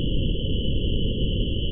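A steady, unbroken high-pitched ringing tone imitating the tinnitus Beethoven suffered holds at constant loudness throughout, layered over a dense, low rushing hiss, with no voices.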